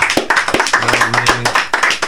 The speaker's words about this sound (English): Clap it up